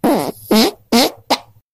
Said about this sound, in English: Farting animals?